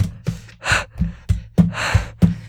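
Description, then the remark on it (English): A voice imitates the heavy, ragged breathing of two young men running through the woods in a race: quick rhythmic huffs and gasps, with soft thumps marking each breath. “In which there's no music and just the diegetic sound of two young men running through the woods. Breathing heavily.”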